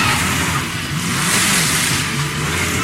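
A Volvo car comes roaring in and slides to a stop, its engine revving and shifting pitch under a loud, rough rush of road noise, continuous for a few seconds with no voices.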